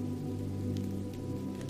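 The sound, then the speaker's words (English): Steady rain pelts against tiny basement windows over the constant low hum of a washing machine, with occasional sharper drop taps. Fairly quiet, no voices. “The rain continues to pelt against the tiny basement windows.”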